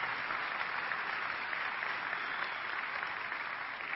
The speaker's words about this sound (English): And he told me that last Sunday, they celebrated 63 years of marriage. That deserves a round of applause, right?